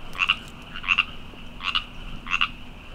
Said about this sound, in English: At the bottom of the hill is a stream, and hiding in the cattails is an OG LA frog species. Oh, we're starting to hear them. The Baja California tree frog. You hear the ribbit, ribbit, ribbit.